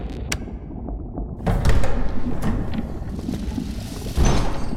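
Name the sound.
door sliding open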